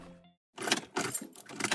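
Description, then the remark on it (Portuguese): A car engine cranks in three quick grinding bursts without catching, after a brief fading electric whine and a short pause. “O carro não tá ligando, Juninho? Deve ser problema na bateria isso daí.”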